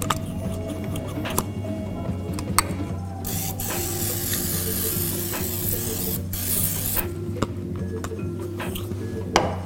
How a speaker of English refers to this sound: So we've got a 13x9, and we're just gonna spray this with a little bit of grapeseed oil.